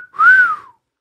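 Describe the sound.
A single human whistle, loud and clear, sliding up then arching back down in pitch over about half a second, like a catcall wolf whistle, with no talking.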